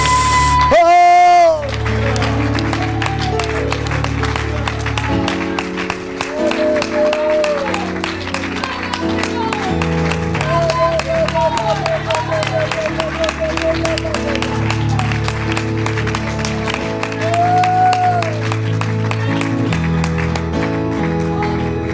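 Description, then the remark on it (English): An audience claps hands in praise to God in a steady, dense rhythm over loud music with sustained low chords and bright melodic lines, the clapping continuing throughout at a strong, even level. “Oh, let's clap our hands and lift our voice to God.”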